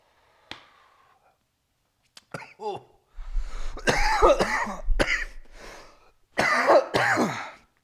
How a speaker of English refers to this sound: Hope you guys like coughing into your fucking ears. Sorry. Sorry about that.